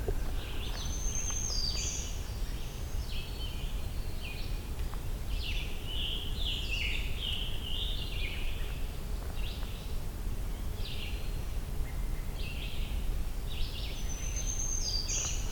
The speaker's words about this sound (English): Black-throated green warbler and another one. Just two different songs.